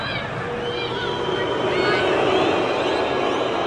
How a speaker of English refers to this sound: So I hear a lot of booing.